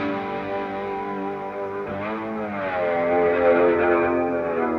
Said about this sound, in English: You'll hear stuff like that in the background, where I'll use an e-bow and wah-wah together with a slide guitar that kind of, and you layer it a couple times, and you can get some really nice ambient choral, you know, soundscapes.